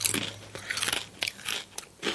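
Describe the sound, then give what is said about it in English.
Loud crunching of crisp taco-seasoned Cheez-It cheese crackers being bitten and chewed, with about five or six sharp crackly bursts in an uneven rhythm and no talking. “It's like the sprinkled Old El Paso on a Cheez-It.”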